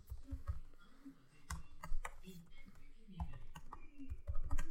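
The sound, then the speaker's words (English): Rapid, irregular clacking of computer keyboard keys, fairly crisp, with a low murmur of voices underneath. “You're typing, and I'm getting my color on.”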